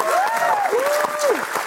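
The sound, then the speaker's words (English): An audience claps steadily and fairly loudly, a dense patter of many hands, while a couple of long, sliding whoops of cheering ride over the applause. “Can we get up a round of applause for Kevin real quick?”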